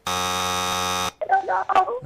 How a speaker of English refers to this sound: We did not make it in before the timer.